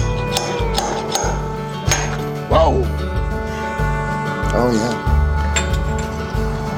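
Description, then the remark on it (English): A barrel of five-year Forbidden whiskey is opened so it can be tasted, with a steady series of hollow knocks and thumps, some with a faint metallic ring, while voices briefly exclaim over the tapping. “So we're going to open up this barrel so that we can taste it.”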